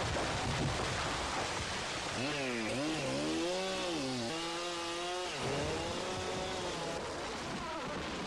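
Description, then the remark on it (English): A chainsaw felling trees in the Amazon rainforest whines and revs, its pitch rising and dipping several times over a constant rough hiss, then settles back into the steady noise. No one speaks. “That's trees falling in the Amazon.”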